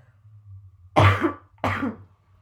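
Two rough, forceful throat-clearing bursts from a person with sinus trouble, fairly loud, separated by a brief pause, with a low hum underneath and no talking.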